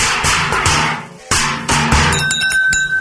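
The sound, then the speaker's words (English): A loud burst of clanking metal like a bag of hammers: several heavy tools clatter and bang together in quick succession, ending with ringing metallic tones as they settle. No voices. “which went like a bag of hammers, I'm sure.”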